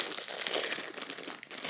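Steady crinkling of a plastic package wrapper being opened, a dense bright rustle with quick irregular crackles running for under two seconds, fairly loud with no talking.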